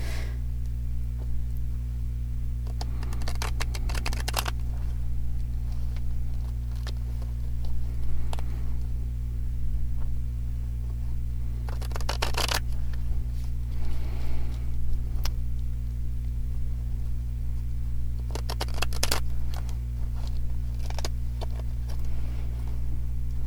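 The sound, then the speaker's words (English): A deck of cards being shuffled for a card reading, with several quick riffling bursts and softer flicking, tapping sounds in between, all over a steady low electrical hum. No one speaks. “And now I'm going to be silent a moment while I shuffle.”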